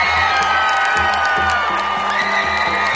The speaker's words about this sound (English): So, Will, this is where you add in a big cheering sound effect.